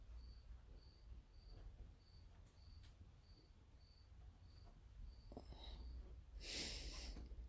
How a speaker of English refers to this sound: Well, I'm taking a walk. I'm gonna sit out on my deck here. You can hear the crickets.